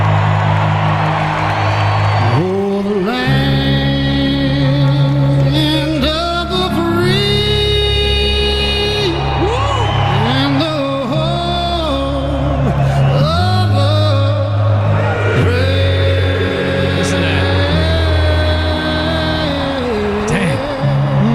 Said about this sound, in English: Oh, that star spangled banner. You can hear the crowd chime in on him.